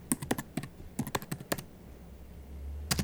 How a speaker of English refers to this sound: What are you typing? Fortune teller, prezicătoare, in Bucharest, no?